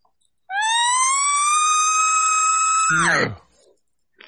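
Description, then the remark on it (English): A voice imitates a bugle call: a long, steady, high-pitched tone held for about two and a half seconds that abruptly drops into a brief, rough, low growl. “So all you're doing is putting a growl at the end.”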